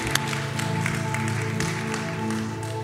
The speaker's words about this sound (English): Can we just give a praise clap for those who put their faith in Jesus for the first time today?